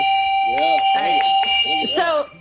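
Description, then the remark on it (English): A yak bell rings with a steady, sustained metallic tone that hangs through the whole moment while a person speaks over it, the ringing staying clear and fairly loud beneath the voice. “sorry, it's your yak bell, no cowbell.”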